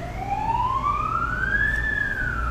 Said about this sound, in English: a bit of a siren going off, sorry, people.